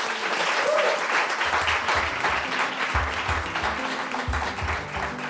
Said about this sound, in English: So please give me a big applause for our work.